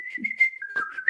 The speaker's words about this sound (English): So yeah, it's just whistles.